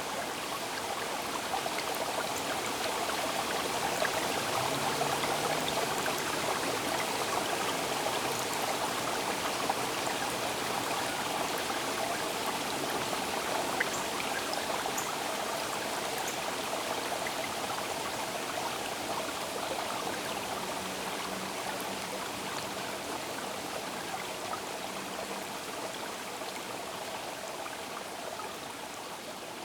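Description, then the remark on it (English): Steady trickling water of a buried creek in Toronto at the place where it first emerges into the open, a continuous babbling flow with fine splashy texture, holding even throughout with no voices. “this is the first emergence of this buried water. And Toronto is full of buried creeks and buried streams.”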